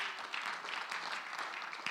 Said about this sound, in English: Let's give the Lord another mighty hand clap.